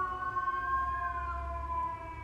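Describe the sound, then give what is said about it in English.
A fire truck siren wails steadily as the truck passes by, a sustained tone that rises slightly and then falls, over a low rumble of traffic, with no one speaking. “Little fire truck passing by, but I shouldn't make much noise.”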